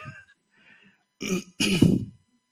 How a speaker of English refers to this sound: I noticed that you have a little cough. The snake oil is exactly what you need. And if you just got rid of that cough, no one would notice it anymore.